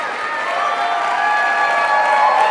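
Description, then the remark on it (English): A large crowd at Living Stones rises to its feet to cheer and applaud continuously in welcome of Dr. Tetsola, a dense, loud wash of clapping and shouting voices that holds steady and swells slightly toward the end. “I was thinking the first crowd was more louder. And this crowd is much, much louder.”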